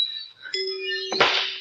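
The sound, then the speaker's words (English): The door of Peavy's drugstore bangs shut: bright, ringing bell-like tones sound first, then a single loud, heavy thud cuts in near the end while the chime keeps ringing. No one speaks. “Why don't you put a stopper on that door, Peavy, so it won't bang?”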